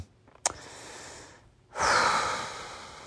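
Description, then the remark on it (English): Heavy, exaggerated breathing: a long breathy inhale after a sharp click, a brief pause, then a louder, rasping exhale, like a prank caller breathing into the phone. No talking. “just kind of calling and deeply breathing as I hear your voice, just trying to work up the courage to tell you that.”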